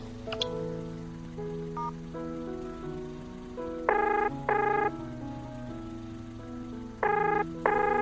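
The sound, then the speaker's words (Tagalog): A phone rings in two double bursts, each pair of bright electronic trills separated by a pause, over a steady droning tonal background, as a call is placed to someone in the same house. No one speaks. “Kailangan pang tawagan sa phone.”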